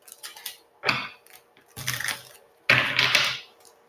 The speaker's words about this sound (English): Let me shuffle these two more times. All right, one more.